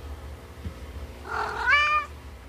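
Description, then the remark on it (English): A single domestic cat meow, clear, rising into a bright tonal cry before cutting off, heard alone over a low, steady background rumble. “And so when cats meow at us, either they're imitating the fact that we use our voices to talk to them, or maybe it's that they're recreating that moment when”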